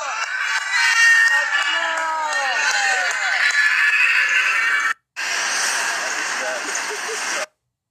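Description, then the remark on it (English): Noisy crowd at a Chabad community Hanukkah street parade in Orlando, Florida, with menorahs on cars: many voices shouting and chattering over a dense wash of sound, with rising and falling calls. The noise cuts off abruptly, then returns as a steadier, hissier crowd roar. “Here's some of a parade, Chabad community of Hanukkah, happening now in Orlando, Florida.”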